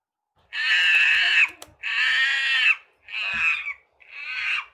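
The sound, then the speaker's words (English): Monkeys call loudly in four long, harsh wailing bursts, each a strained, high-pitched cry separated by brief pauses, with the last two calls a little shorter than the first. “Monkeys are loud, very loud. You can hear the booming sound of monkeys from about 1 mile away.”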